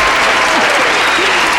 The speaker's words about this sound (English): I wish I get that round of applause every time. Oh, here, I'll send it to you. It's really easy. It's just there.